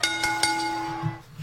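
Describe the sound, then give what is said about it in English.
A bell is struck three times in quick succession, leaving a bright, sustained metallic tone that rings on and fades out after about a second, with no talking. “Ring that bell.”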